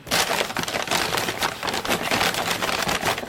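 A plastic bag is crumpled and scrunched continuously for a few seconds to imitate a hand diving into a bag of crisps. It gives a dense, loud crackling with irregular bursts of bright, rustling crinkles and no talking.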